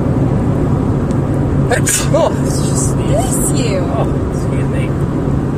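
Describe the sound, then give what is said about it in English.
A sudden sneeze bursts out, followed by a brief breathy follow-up, over the steady low rumble of a moving car interior. “Oh, excuse me. Bless your precious soul.”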